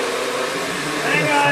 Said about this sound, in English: He's shop vacking up his spilled liquor. It's like, oh, wait a minute. My Dustbuster's right here.